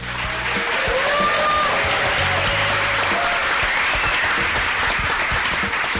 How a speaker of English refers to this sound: And the folks out there were kind enough to put down their forks and knives to give us a round of applause. We are doing a lunchtime session for the first time.